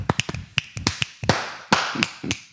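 A scattered audience of the show Taco the Town snaps their fingers in quick, uneven bursts to welcome a guest, mixed with a few fuller handclaps. The sharp, crisp pops overlap loosely, with no talking.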